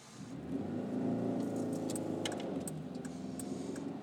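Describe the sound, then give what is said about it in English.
A car engine hums steadily while driving in morning traffic, a low continuous drone that swells slightly, with light metallic jingling and clicks over it. “God, I fucking hate traffic in the morning.”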